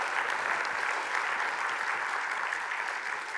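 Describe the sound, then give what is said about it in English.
A crowd gives a round of applause for a church worship team, clapping steadily for several seconds, a dense, even wash of applause with no voices rising above it. “And would you give a round of applause to our wonderful worship team?”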